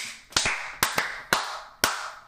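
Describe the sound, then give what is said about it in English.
Several sharp hand claps in an uneven rhythm, six quick smacks grouped roughly in pairs and singles, moderately loud and crisp, with no talking underneath. “That is the most claps you would get from me tonight.”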